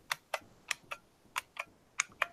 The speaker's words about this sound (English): Yeah, this week's an IBM Model M from 1992. It's, let's see. I don't know. Its birthday is January 27th. That's what the date code on the inside is.